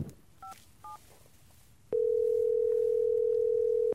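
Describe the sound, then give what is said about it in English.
Two short keypad beeps as a telephone is dialed to call an expert, then a loud, steady, low-pitched dial tone that hums unbroken for about two seconds before cutting off. “Let me see if I have a signal, and maybe I can dial in an expert.”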